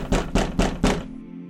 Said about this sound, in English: Your conversation is interrupted by a knock at the door.